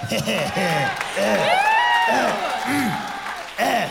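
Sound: audience clapping and cheering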